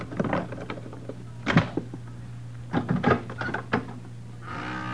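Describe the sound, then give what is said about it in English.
Metallic clicks and rattles come in short bursts as a pass key works the lock of a hotel room door, followed by the door creaking open over a low steady hum. No one speaks. “Now keep back. I'm going to use the pass key.”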